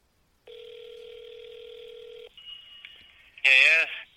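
A phone dial tone hums steadily for about two seconds, followed by a few quick dialing beeps as a company's phone number is called, and then a loud, short ringing burst on the line.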